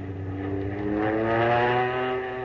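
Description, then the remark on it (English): A propeller airplane engine drones loudly as the plane is rolled over onto its back in an aerobatic roll, its steady buzzing tone rising slightly in pitch and swelling in volume through the middle before easing a little, with no voices. “suddenly turned the plane over on its back.”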